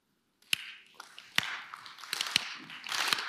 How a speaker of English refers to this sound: Okay, stop. That was excellent. 5 seconds. They beat you by 1 second in Oslo, but 5 seconds. Every group claps at a different rhythm. You're slow clappers. Some groups are fast clappers.